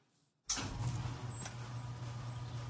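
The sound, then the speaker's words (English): After a brief hush, the engine of a 1966 E-Type Roadster, a vintage sports car restored over three years, fires up abruptly and settles into a steady, deep, rumbling idle, loud with no voices. “The 1966 E-Type Roadster. My father spent 3 years restoring this car.”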